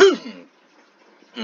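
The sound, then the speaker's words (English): A voiced throat clearing rumbles for a moment, then a short quiet gap, and a second throat-clearing sound starts just as it ends. No speech. “I have to clear my throat so many times here.”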